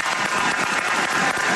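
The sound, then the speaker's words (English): Steady, dense applause on the KFAN radio show, given for a football story about Ahmad Rashad: a continuous crackle of many hands clapping at once with no pauses and no voices over it. “I got to give you a round of applause for, quite honestly, one of the greatest football stories I've ever heard in my life.”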